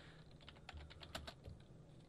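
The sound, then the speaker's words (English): Rapid clicking of keys on a computer keyboard as someone searches on Google, a quick irregular run of light taps, with no voices over it. “You're listening to the typing hour.”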